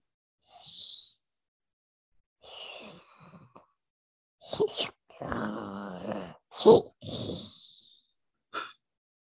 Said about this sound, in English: Keep walking towards it very slowly. The breathing continues.